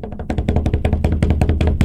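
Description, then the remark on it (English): Hands drum rapidly on a tabletop in a quick, uneven drum roll of dull, low thumps mixed with sharper taps, fairly loud and steady, with no talking. “It probably just sounded like thumping, but I tried to beat the table for you.”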